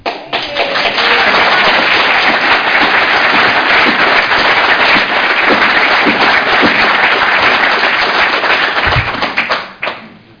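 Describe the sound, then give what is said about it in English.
Loud, sustained applause from a crowd at an Uttlesford District Council meeting, a dense wash of many hands clapping at once that holds steady for about nine seconds before tapering off abruptly. “Can I draw your attention to the fact that it is this sort of applause which is going to make this a very long evening?”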